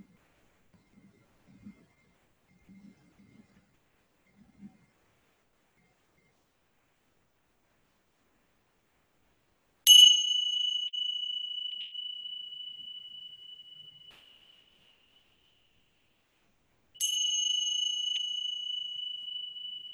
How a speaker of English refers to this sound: As the sound of the bell fades away, feel free holding that awareness as best as you can, opening the eyes and just bringing that awareness now into the rest of the day as best as you